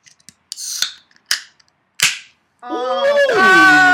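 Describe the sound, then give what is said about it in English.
A beer container cracks open: a few sharp pops, each followed by a brief fizzing hiss, then a loud, wavering high-pitched tone takes over. “I haven't even had a sip of beer yet. Well said. You know, I guess you're right. All right, well, let's crack one of these open.”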